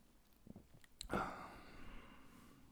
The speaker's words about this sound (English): Am I going to drink another sip of this soda? I am jacked today.